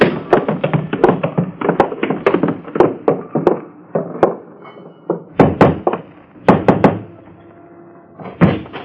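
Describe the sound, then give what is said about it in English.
Footsteps descending cellar steps, holding the rail, near Front Street off New York's East River: a long run of hollow, wooden thumps and taps at an uneven pace, bunching in places and pausing briefly, loud and clear with no voices. “You're going down cellar steps, so hold on to the rail.”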